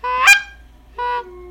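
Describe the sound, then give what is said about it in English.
A goose call is blown, giving a loud, sharp honk, then after a short pause a longer two-part honk that drops in pitch, a convincing imitation of a goose with no talking. “He always does that when I do duck and goose calls.”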